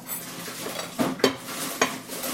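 Dishes and silverware clink as a breakfast of eggs and bacon is served: a few sharp, scattered knocks of plates and utensils over a low, steady background hum, with no talking.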